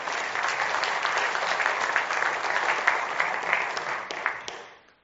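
A crowd claps steadily in a dense, even wash of applause for several seconds, with a few sharper individual claps near the end as it tapers off and fades out.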